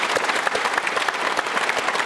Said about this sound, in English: Ladies and gentlemen, big round of applause for Marcus Watson. Great to have you here.